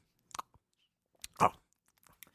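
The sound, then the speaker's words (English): Chewing of food, with a few irregular crunchy bites and one louder, longer crunch in the middle, then softer smacking sounds trailing off. No one speaks. “Hold on, let me chew”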